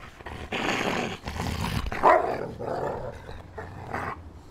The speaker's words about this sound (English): Look, my dogs are playing. It's so cute, actually.